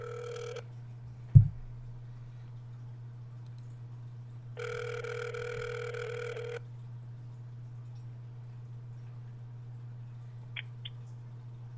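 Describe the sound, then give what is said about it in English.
The ringback tone of an outgoing call placed on a regular phone buzzes in two bursts, a brief one at the start and a fuller two-second ring later, with a steady low hum and a single thump between. “I will now call you on a regular phone to see if that works.”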